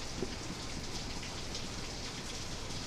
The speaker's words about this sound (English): I wonder if I can hear the rain, because it's pouring right now. Oh, let's hold the mics towards it.